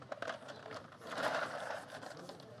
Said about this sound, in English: All right, here we go. Put some ice in there. Yeah, you want a little bit of ice? We're gonna pour it over ice. There you go.